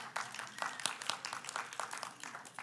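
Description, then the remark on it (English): A crowd applauds a spaghetti bake from a potluck, with dense, overlapping claps that hold steady and moderately soft for a few seconds, with a few sharper individual claps standing out from the patter. “Can we get a round of applause for that one?”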